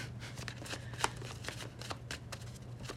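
A deck of tarot cards being shuffled during a tarot reading, with a steady run of quick, crisp riffling snaps that flutter along for several seconds at moderate loudness, over a faint low hum and no talking.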